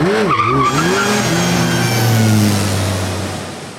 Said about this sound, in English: In this story, it's down a gravel logging road near North River. It doesn't matter where in the heck North River is, just come along for the ride. Okay, we're riding with my dad in his veterinary van.